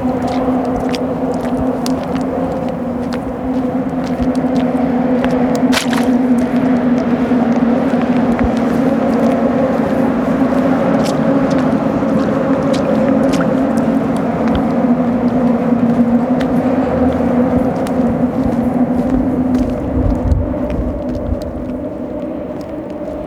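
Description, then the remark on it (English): A steady roar of wind and passing traffic on a pier in Gatineau, surrounded by water and overlooking the Alexander Bridge, windy and wet after rain the night before, with a constant low engine-like drone and hiss holding evenly throughout and no voices. “I've been coming to the pier in Gatineau for over a year now. It's my safe place. It's surrounded with water and it overlooks the Alexander Bridge.”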